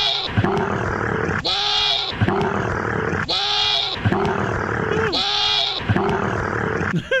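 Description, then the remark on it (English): A camel and a goat grunting and bleating, loud, in a steady repeating rhythm of deep rasping grunts broken by higher, wavering bleats roughly every second. “Again, this is a camel and a goat right there.”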